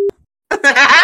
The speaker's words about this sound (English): I'm just going to put a beep over it.